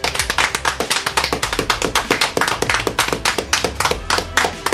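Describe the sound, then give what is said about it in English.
A steady burst of hand clapping, many sharp claps in quick, even succession, loud and continuous for several seconds with no voices. “Now, before we go any further, I think it's only right that we put our hands together and give ourselves a little clap.”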